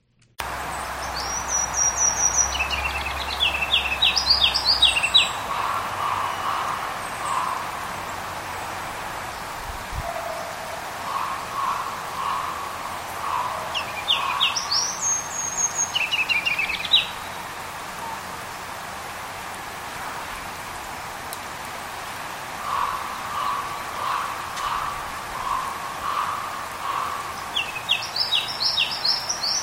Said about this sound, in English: That was another version of a ruby-crowned kinglet.